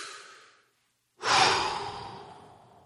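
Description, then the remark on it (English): A slow, deep calming breath fades out, then after a brief pause comes a loud, breathy exhale or sigh that gradually trails off. No talking. “Breathing.”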